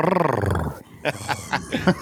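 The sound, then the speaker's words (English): A man gives a rough, rumbling growl imitating a tiger, loud for under a second, followed by a few short voiced bursts. “that was his tiger. That was rough.”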